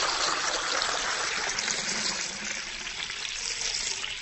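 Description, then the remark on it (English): Water pours steadily into a glass, filling it right to the brim, a continuous splashing trickle that holds a fairly even level for about four seconds, with no one speaking. “what I'd like you to do is take this glass and fill it right to the top with water.”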